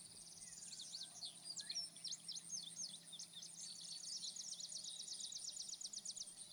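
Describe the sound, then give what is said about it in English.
A steady chorus of crickets and cicadas buzzes continuously on a rural summer night, with rapid high-pitched chirping pulses layered over a constant shrill drone. It stays fairly quiet and even throughout, and no one speaks. “Crickets and cicadas are buzzing.”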